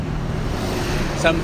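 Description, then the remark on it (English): A school bus cruises past in town at ten past six in the morning, its deep engine drone steady throughout, with a short high squeal rising briefly near the end. “Oh, and as schedules go by, here goes the school bus.”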